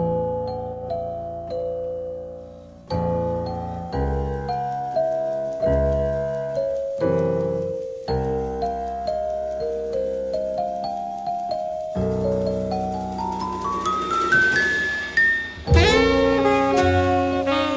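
A celeste plays a tinkling, bell-like melody over low bass chords, with notes ringing and decaying, building to a rapid rising run near the end. No one speaks.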